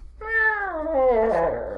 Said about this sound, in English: That sounded like a robot cat you just heard.